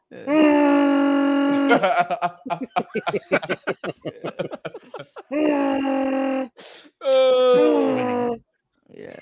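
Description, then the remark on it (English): A person does a Wookiee roar impression: three long, strained, harmonic howls with sliding pitch, loud and rough, separated by a burst of choppy, rapid vocal sounds like laughter. “Can any of y'all do a Wookiee impression?”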